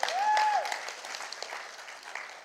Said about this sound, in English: Another round of applause for our awesome Iranian family.